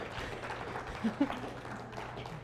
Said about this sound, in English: Now I'm going to let these ladies sit down, so give them a round of applause for their wonderful participation.